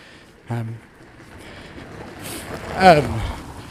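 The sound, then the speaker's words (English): A car passes by, its engine noise swelling to a loud peak and then fading as the pitch drops. Earlier, a person briefly hums a low "mm" over the steady background rumble. “You heard the M there as the car passed.”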